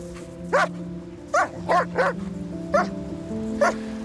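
A grey Old German Shepherd avalanche rescue dog of the TOPR mountain rescue service, met at its headquarters in Zakopane, Poland, barks six times in loud, irregular single woofs over a steady low humming background.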